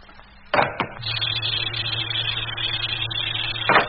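A couple of sharp mechanical clunks, then a steady droning pump with a broad airy hiss running for several seconds before another clunk ends it. Air is being pumped out of an airlock, with no voices.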